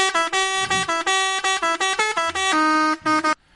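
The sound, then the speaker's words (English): A truck horn honks loudly in a rapid string of short, blaring blasts, its harsh buzzy tone stepping between a few pitches before the honking cuts off abruptly. “Hey, look, they have a horn if they get stuck.”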